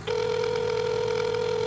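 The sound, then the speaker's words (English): A little wicker cricket toy telephone rings with a steady electronic tone and a fast, fluttering pulse, loud, sounding continuously without pause and with no voices. “See? It's ringing.”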